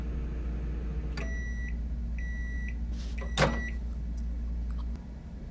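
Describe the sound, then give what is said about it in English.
A microwave oven heating oatmeal hums steadily with a low drone, punctuated by three beeps, a brief clunk, and the door opening near the end; no one speaks. “I'm about to be late for class, so I microwave some oatmeal.”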